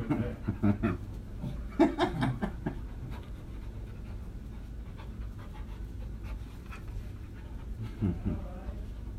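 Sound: dog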